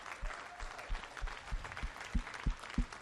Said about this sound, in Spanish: Somebody put your hands together for God. Vamos a darle un aplauso al Señor.